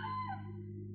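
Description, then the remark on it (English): A rooster's crow trails off, its bright, wavering call fading within half a second over a steady low background hum. “The roosters are crowing”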